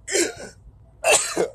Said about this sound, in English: Excuse me. Sorry, I sneezed there.